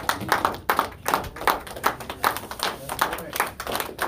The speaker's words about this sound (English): Clap offering to the Lord. Thank you, Jesus.